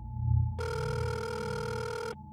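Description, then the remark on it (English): A single telephone ring on a call to 911 emergency services made from inside a car: one steady, buzzy electronic tone lasting about a second and a half, clear and fairly loud over a low background rumble, with no talking. “I had to call 911.”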